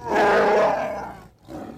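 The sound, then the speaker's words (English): A loud, growling creature roar rumbles for about a second, fades, then a second roar begins right after a brief pause. No voices are present. “That was a Hoth. Yeah. Hoth growl.”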